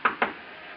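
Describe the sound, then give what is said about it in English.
Two quick, sharp knocks on a hotel room door (room 300), spaced a short beat apart, followed by quiet room tone with no voices. “I stopped in front of room 300 and knocked.”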